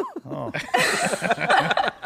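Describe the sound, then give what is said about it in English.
Several dogs bark in quick, overlapping bursts, with a high yelp at the start and a busy, fairly loud flurry of barking throughout. “Wait, you got dogs barking.”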